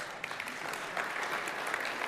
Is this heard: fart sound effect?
no